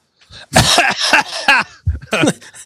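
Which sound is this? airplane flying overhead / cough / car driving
cough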